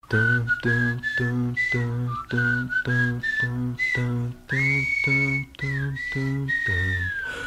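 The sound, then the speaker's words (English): The final song on an album, a pop-rock track, plays with a bright, melodic whistle carrying the tune over steady, pulsing chords. The whistled line glides and holds notes, clear and up front, with no voices singing. “Yeah, so that brings us to the final song on the album, one more to go.”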